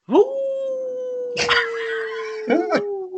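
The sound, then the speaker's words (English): A person imitates a wolf howl convincingly: one long, sustained howl that rises sharply at the start, holds steady for about three seconds, and sags slightly, with brief breathy bursts partway through. “I can't believe we've got this far in our relationship without me knowing that you can howl accurately like a wolf.”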